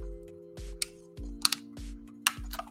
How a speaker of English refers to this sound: Ooh, that was a nice sip of water.